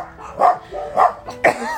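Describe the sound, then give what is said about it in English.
A dog barks in a quick series of four sharp, fairly loud yaps, spaced unevenly with short pauses between them, sounding slightly muffled as if from inside an enclosed space, during an animal rescue at a hoarder's home. “Is there a dog in there?”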